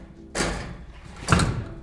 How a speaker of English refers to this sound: Yeah, let me close this. Ready? You ready to hear this ASMR of the dungeon door closing?